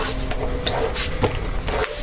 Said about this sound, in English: You just hear like a little door closing. Sorry. Like a little door closing, sorry, like a whoosh.